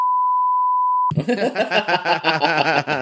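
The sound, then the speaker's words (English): A steady, loud censor bleep holds one pure pitch for about a second, then cuts off abruptly as people break into laughter and chatter. “I'll beep this out, but it is...”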